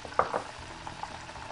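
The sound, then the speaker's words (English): Chicken pieces frying in oil at about 350 degrees: a steady, soft bubbling sizzle with a couple of brighter crackling pops near the start, then settling into a low, even fizz with no voices. “So we're gonna let those cook up in the oil.”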